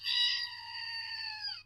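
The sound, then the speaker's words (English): A squeezed toy goat lets out a single nasal, buzzy bleat lasting under two seconds, loudest at the start and holding a steady high pitch before cutting off, with a faint low hum beneath. “It's a little goat that you press, and it makes that noise.”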